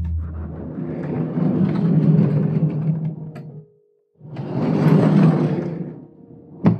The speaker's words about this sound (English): A soft golden glow bleeds between the door and its frame. He waits, patiently. The glow dims and the door opens.